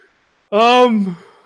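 A single drawn-out voiced yawn from a person, starting abruptly and sliding downward in pitch before trailing off, lasting under a second with no other sounds around it.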